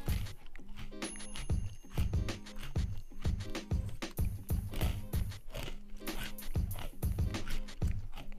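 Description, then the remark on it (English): Steady crunching and chewing of pretzels, with rapid rhythmic bites repeating throughout and no talking. “I'm sorry, I'm munching on pretzels.”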